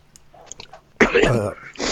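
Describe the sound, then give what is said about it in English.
After a second of faint, quiet noises, a sudden loud, harsh cough bursts out and rasps for about half a second, then a second cough begins just as the sound ends. “Pardon the coughing, sorry.”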